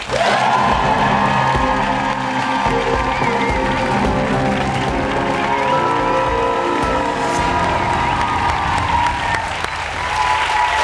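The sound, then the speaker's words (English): The studio audience of The Daily Show bursts into sustained, loud applause with cheers and whoops as the guest, filmmaker Will Packer, is welcomed. It is a dense, steady wash of clapping lasting about eleven seconds without letting up. “What a great crowd, welcome, man.”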